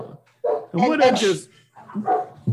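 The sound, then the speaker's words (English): A dog barks inside a house in a few quick, sharp bursts, the middle one longer and louder, with short pauses between. “Dogs in the house.”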